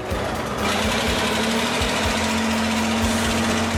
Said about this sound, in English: That's right, a bulldozer.